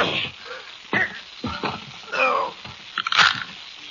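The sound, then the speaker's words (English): A series of harsh, crackling crunches as a man's neck is broken while he is shoved too hard into an oven, arriving in irregular bursts over a few seconds, with gritty grinding between the louder snaps and no voices. “I guess you busted his neck.”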